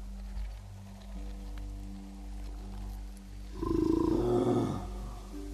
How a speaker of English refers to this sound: That's when I heard the growl.